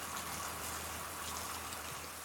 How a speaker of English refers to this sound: The rain is coming down heavy now. It starts talking.